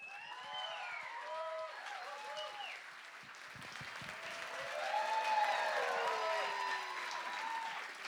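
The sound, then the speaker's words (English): Sustained audience applause with whoops and cheers rising over the clapping after a live music set on Lightning 100 radio, filling all eight seconds and swelling louder midway before holding steady to the end. “Let's hear it again”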